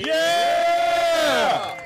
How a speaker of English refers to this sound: Boo. You booed me?